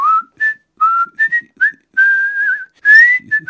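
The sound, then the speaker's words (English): A casual, tuneful whistle plays a short, meandering melody of quick chirpy notes and a few held tones, clear with no one talking. “2 days later, Henry Tudor left Vannes with just 5 servants, saying he was going to meet a friend, presumably whistling casually.”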